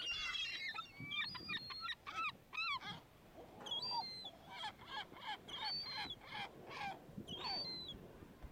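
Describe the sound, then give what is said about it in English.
A loud, busy chorus of birds calls over and over, harsh honking and cawing cries overlapping in quick bursts, with no one speaking. “Thank you, birds.”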